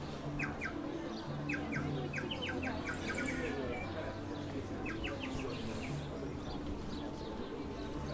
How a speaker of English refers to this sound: but no, that's actually loads of sparrows just sat in the... Actually, there is a guy here with a bird call as well. But it was the... maybe that's why all the sparrows are there, because this guy's selling his bird call.